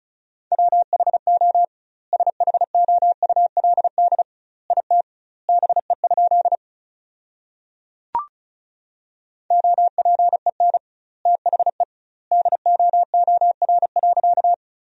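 Rapid Morse code at 35 words per minute with double word spacing, sending sentences built from common words: a steady mid-pitched tone keyed into quick dots and dashes, grouped into words with pauses between, and a single sharp click midway.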